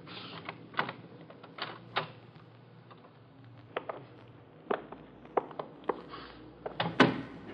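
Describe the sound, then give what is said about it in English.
A museum door being opened: a series of sharp clicks and rattles from the handle and latch, irregularly spaced, ending in a louder clunk as it gives way. No one speaks. “this door might do it.”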